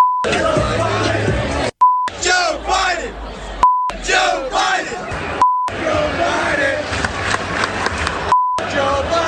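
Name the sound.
stadium crowd chanting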